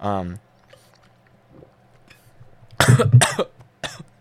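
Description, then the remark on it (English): Two loud, harsh back-to-back coughs from someone choking on water, following a brief voiced sound and a stretch of near silence. “I just choked on water.”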